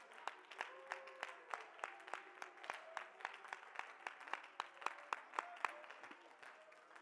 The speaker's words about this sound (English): Would you clap your hands and praise?